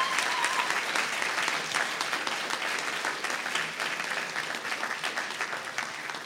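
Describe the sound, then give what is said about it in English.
A crowd claps steadily and fairly loudly for several seconds, the dense patter of many hands holding an even level without voices breaking through. “So if you give them a round of applause, I'd really appreciate it.”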